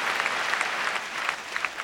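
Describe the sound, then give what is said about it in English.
An audience applauds a question, a dense wash of many hands clapping at a fairly even level for a couple of seconds with no voices over it. “It's very rare that a question gets applause.”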